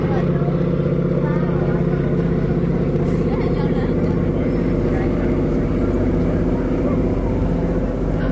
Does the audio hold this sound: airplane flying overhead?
yes